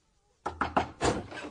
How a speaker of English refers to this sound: So it came as quite a shock to my old friend Dolly Bantry when instead of these pleasant sounds she was rudely awakened by a frantic banging on her bedroom door.